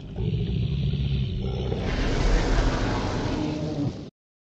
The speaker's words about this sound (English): The dragon sees you along with the other men, sort of stares down at you for a second, And you hear the roar once more.